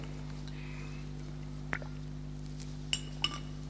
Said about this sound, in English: Sorry. I'll take a drink of water.